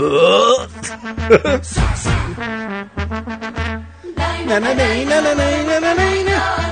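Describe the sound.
A voice imitates a deep, drawn-out groaning fart like a rhinoceros groan, with several loud, strained vocal bursts rising and falling in pitch, without any speech.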